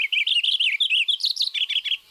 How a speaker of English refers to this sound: Or does it sing out using a sweet and slurred cadence like this purple finch?